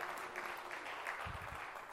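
A crowd claps steadily in dense, continuous applause that fills the whole moment, fairly close and even, with a few low thumps near the end.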